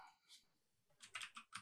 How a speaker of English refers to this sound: That's a lot of typing, but okay.